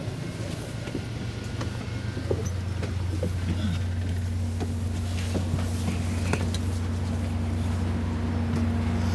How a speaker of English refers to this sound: Okay, getting off the train.